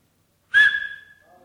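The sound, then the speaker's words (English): A single sharp whistle from a person begins abruptly after a moment of silence, a bright sustained tone that holds steady and then fades out slowly. “Because of the thunderous amen, I decided to whistle.”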